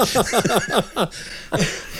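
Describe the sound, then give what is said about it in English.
A quick run of about six hacking coughs in steady rhythm, then a short pause and one more rough, breathy cough. Fairly loud, with no talking. “Excuse me for coughing.”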